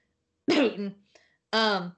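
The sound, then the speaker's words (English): A harsh cough followed by a brief pause and a second raspy, throaty clearing burst, two loud bursts with a small click between, heard alone without talking. “So you got a terrible cough there.”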